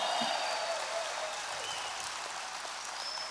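An audience applauds steadily, a dense wash of many hands clapping at once that holds an even, fairly loud level throughout without any talking.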